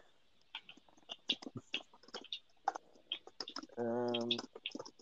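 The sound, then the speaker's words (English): Rapid, forceful clacking of keys on a computer keyboard, fairly loud, with irregular bursts of strikes throughout and a brief sustained hum-like tone near the end. “Aggressive typing.”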